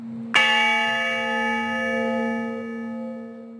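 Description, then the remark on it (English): A single deep strike of a memorial bell of the Honor Bell Foundation, tolling for veterans, rings out clearly, its rich metallic overtones sustaining and slowly fading over several seconds, with a steady low hum beneath and no voices. “Oliveira created the Honor Bell Foundation.”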